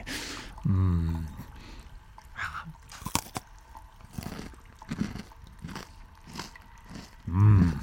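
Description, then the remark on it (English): Biting and chewing of a crunchy, salty snack, with a run of crisp, irregular crunches, framed by brief voiced murmurs near the start and end. “Crunchy.”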